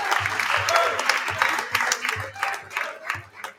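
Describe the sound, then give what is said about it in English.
A crowd applauds steadily for the West Genesee ice hockey team, dense overlapping claps forming a loud, sustained wash of sound with faint cheering mixed in. “So please give a round of applause for yourselves and for your teammates who came up here tonight.”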